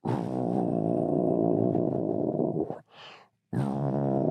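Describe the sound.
A voice imitates an alligator with a deep, rolling growl that rumbles steadily for nearly three seconds, breaks into a brief breathy hiss, then resumes the low guttural roll.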